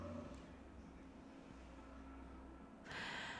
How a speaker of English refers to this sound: Let's wait for this car to pass, or whatever the fuck that is.